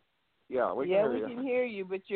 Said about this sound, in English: Yeah, we can hear you, but you're choppy.